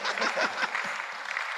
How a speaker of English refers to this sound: Oh, I thought she's clapping for me. Oh, you see your life. Oh, this world clap to me.